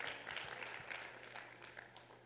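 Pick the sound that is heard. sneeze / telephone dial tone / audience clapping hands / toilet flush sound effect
audience clapping hands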